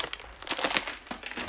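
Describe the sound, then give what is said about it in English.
Crackly crinkling of plastic candy wrappers as the candy is put away, a burst of irregular rustles that swells and fades over a second or so, with no talking. “I'm gonna put away the candy. I'm gonna put it away here.”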